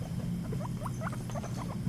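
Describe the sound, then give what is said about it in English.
Rats squeak in a quick, uneven run of short, rising chirps, a dozen or so in under two seconds, layered over a steady low rumble. “Number four, rats.”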